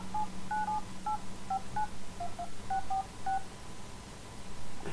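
A mobile phone keypad beeps through a string of about ten short dialing tones at an uneven pace, dialing a number, over a low steady hum with no one speaking.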